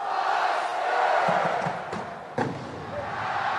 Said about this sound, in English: Hold on. I need to stop here. There's just, for a while, there's just people screaming and yelling Husker power, right? There's nothing going on the screen. Right, but it's exciting. It's building it up.